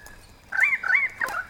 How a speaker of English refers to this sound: Ha! That's a currawong, a bird, not a mammal. Hey, shouldn't you be getting ready for bed, currawong? Must be having a late night currawong party or something.